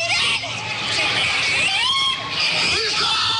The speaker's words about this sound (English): Panic also caught on camera in the aftermath. Lawn chairs and possessions left behind. People screaming for their loved ones.